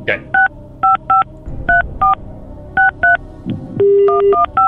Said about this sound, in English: Just change the last digit on that phone number you just dialed. Just change the last digit.